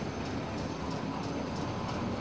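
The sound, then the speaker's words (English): A train whose last stop is Scunny rumbles steadily from inside a carriage as it begins moving on time, with faint, evenly spaced clicks repeating about three times a second over a low, continuous drone. No one speaks. “Oh, at last, train's starting to move.”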